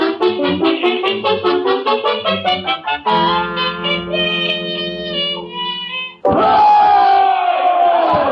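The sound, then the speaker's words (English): A loud rally crowd chants in rhythmic bursts, then holds long sustained shouts, before breaking into a full, roaring cheer for the last couple of seconds. “Oh, chicken, ain't this some rally?”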